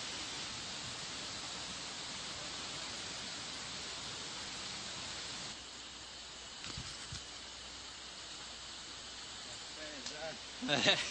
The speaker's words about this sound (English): And we're at the second waterfall.